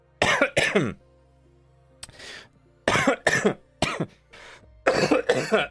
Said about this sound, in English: Coughing fit now. That's how. Welcome back, cough. That's not good, is it?